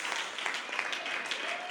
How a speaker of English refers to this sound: Come on, clap your hands.